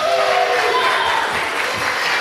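An audience at a nativity claps steadily to welcome the narrator, a dense wash of many hands with a few cheers mixed in, loud and continuous throughout.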